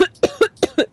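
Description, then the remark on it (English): A rapid fit of about five short, harsh coughs in quick succession, fairly loud, with a rough throat-clearing quality and no talking. “No, I have a cough drop. It's fine.”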